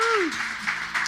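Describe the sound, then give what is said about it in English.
A short burst of audience applause for Scioto Hills Christian Camp, a steady, dense wash of many hands clapping at moderate volume, with a voice briefly trailing off at the very start. “And so, yeah, we can clap for our Scioto Hills in camp.”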